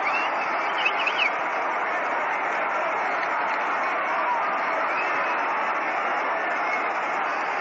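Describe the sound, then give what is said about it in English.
A big baseball stadium crowd applauds and cheers for a batter coming up to bat, in a steady, dense wash of clapping and murmur that fills the whole stretch without a break, with no one speaking over it. “Joe DiMaggio coming up and getting a nice round of applause. Listen to it for a moment.”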